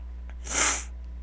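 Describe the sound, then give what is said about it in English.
One sharp, loud sniff right up against the microphone at a radio station, a short hissy rush of air lasting under half a second, with no talking and only a low steady hum behind it. “Because if you breathe like that or sniff like that again on the radio station, I'm going to pop”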